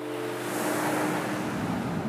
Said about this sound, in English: Even in these narrow back streets where it appears to be calm, a passing motorbike may sneak through, reminding you of the nearby chaos.